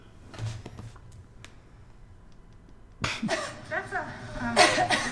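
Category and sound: human body sound, coughing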